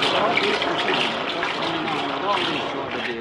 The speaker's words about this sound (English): Darn this washing machine. What makes this thing... act like this.